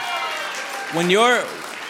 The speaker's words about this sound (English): So let's give a round of applause for our student band